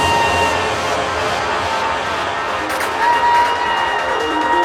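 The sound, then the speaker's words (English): A crowd at the Blue Frog club cheers and shouts at 1:50 a.m. in a dense, loud roar that holds steady for several seconds, with a few thin high whistle-like tones running through the noise. “Do we still have people in the house? Come on, Blue Frog. Make some noise.”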